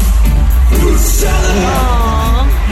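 A loud, dense concert crowd roars and cheers without a break, with many voices singing along and a high, sustained whoop rising above the din toward the end.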